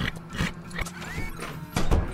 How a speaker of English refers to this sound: You fucking horse, man, is freaking me out right now.